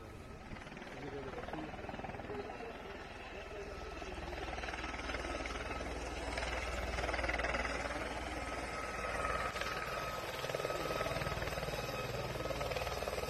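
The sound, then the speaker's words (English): A helicopter flies overhead and drops down to land at a funeral, with a steady, loud rotor drone and engine whine that swells slightly midway, with faint, indistinct voices murmuring beneath it. “Why is this helicopter dropping at this fucking funeral?”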